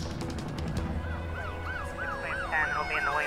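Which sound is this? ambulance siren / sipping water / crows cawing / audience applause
ambulance siren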